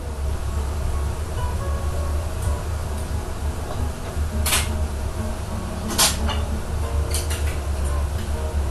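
A steady, dense sizzle of frying oil in a restaurant kitchen fills the background, broken by a few sharp metallic clanks of pans and utensils spaced a second or so apart, with no one talking.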